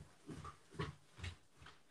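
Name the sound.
dog whimpering and panting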